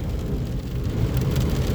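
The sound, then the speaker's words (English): Steady rain patters against a car while a deep road rumble drones underneath, a continuous muffled wash heard from inside the moving vehicle, with no voices. “I'm driving in the rain, and this dude is tailgating hard.”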